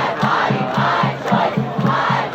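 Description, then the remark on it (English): A large crowd gathered outdoors outside the US Supreme Court after news of a leaked draft opinion to overturn Roe versus Wade: a dense, steady roar of many voices with a low, rhythmic pulse repeating every fraction of a second, like chanting or drumming, throughout. “As the news spread, a crowd started to form outside the Supreme Court.”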